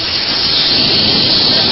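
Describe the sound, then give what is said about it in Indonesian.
Loud, steady sizzling of tempe, tofu and crackers frying in hot oil in a kitchen, a continuous crackling hiss that fills the whole short stretch with no voices over it. “Lagi goreng tempe, goreng tahu, goreng kerupuk, itu suaranya agak kenceng kok.”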